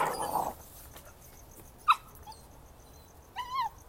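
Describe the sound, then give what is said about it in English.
A male puppy trying to scare a dog lets out two short, high-pitched yelps: a sharp bark partway through and a whiny, wavering yip near the end, with quiet noise between and no talking. “He doesn't bite. He was just trying to scare the dog. It's okay. He's a puppy, sit.”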